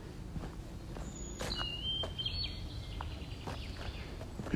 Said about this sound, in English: Can you hear the birds?